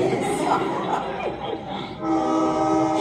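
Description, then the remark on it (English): A slow train rumbles past, a steady low roar of wheels and cars, then its horn sounds a loud, sustained multi-tone blast that holds to the end. “It's a slow train.”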